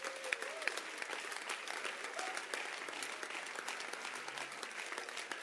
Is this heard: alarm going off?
no